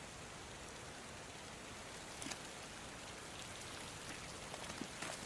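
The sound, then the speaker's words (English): Heavy October rain on the battlefield below Passchendaele Ridge pours down in a steady, dense hiss, with a few sharper drops and splashes ticking through now and then. No voices, just the continuous downpour. “A dry September saw British forces advance, but in October the rains returned harder than before, turning the battlefield into a swamp.”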